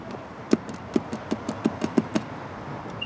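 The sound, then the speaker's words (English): Buttons on an old call box next to a red gate at Boynton Court are pressed in a quick, uneven run of about nine sharp clicks, with a short, high electronic beep right at the end. “There's an old call box next to the gate. And I tried all the buttons, but I didn't think it worked.”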